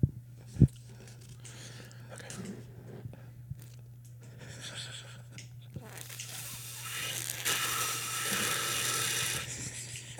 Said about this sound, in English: Bro, I don't think I've ever heard somebody sip hot chocolate louder than you. Well, to be honest, I'm doing it on purpose.